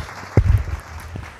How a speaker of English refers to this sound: There you go. There we go. Just clap for everybody.